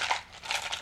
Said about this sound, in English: Yeah, let me just get into my dice case.